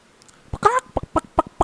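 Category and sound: vocal imitation, voice imitating chicken clucking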